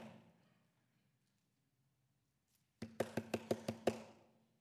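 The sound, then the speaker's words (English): A rapid run of about seven firm knocks on a wooden door, loud, coming after a few seconds of near silence. “I'm not going to stop knocking.”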